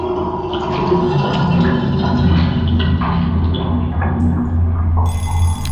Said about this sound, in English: Shrill alarm. Wake up.